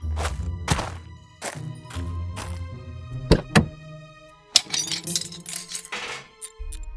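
A metal hubcap dropped into a bathtub by a little dog named Slurb, among old cars and discarded appliances, clatters with several loud clangs and thunks, a brief metallic ring, and rumbling scrapes in between. No one speaks.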